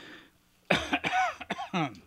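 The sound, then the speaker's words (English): After a brief quiet moment, a person lets out a short series of harsh, throaty coughs, three or four bursts in quick succession with a raspy, voiced edge. “You know, with this, between my cough and everything else that I've been doing this week,”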